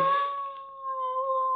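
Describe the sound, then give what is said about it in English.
A dog lets out one long, drawn-out howl at night in the rainy, thundery wilderness of Long Island, coming from the left through trees, holding a steady, slightly wavering pitch with a brief harsh edge at the onset, unaccompanied by any talking. “But that's where the dog yelled from, huh?”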